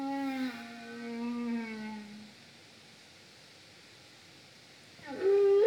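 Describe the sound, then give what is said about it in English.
Whale song: a long, moaning call with rich overtones glides slowly downward, then fades into quiet before a second rising cry swells in at the end. No one speaks. “Let's hear what the whales are singing to God.”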